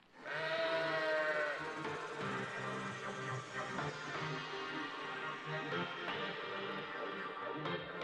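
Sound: sheep bleating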